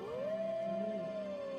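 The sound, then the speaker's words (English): A single wolf howl rises and then holds a long, steady, mournful tone, clear with no other voices present. “I don't think that putting all those howls in the background is going to make her feel any better.”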